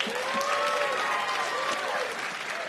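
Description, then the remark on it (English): Thin, scattered clapping from a small portion of an audience, those who believe there's a God, a steady patter of hands lasting the whole moment, with faint crowd voices murmuring underneath. “How many of you, by applause, believe there's a God?”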